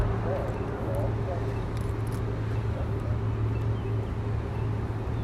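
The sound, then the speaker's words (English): A steady, low traffic rumble with a droning engine hum, as cars move along a street at the Bolton Crosswalk around 12:05, with no pedestrians crossing; the noise stays even throughout without distinct swells from individual vehicles. “And all you can really hear is the sound of cars.”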